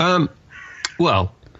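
Two loud, harsh, hoarse caws from crows lined up just outside a window at night, about a second apart, with a quieter murmur of background sound between them.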